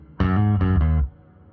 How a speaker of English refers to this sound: And then click that one on. This is the subtle reverb, right? Yeah, the subtle reverb. I mean, it's still not very subtle, but it's there.